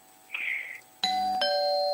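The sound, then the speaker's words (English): A doorbell chimes: two bright, ringing tones struck in quick succession, the second slightly lower, each sustaining with a shimmering hum. A brief higher tone sounds just before the chime. “Someone's at my door.”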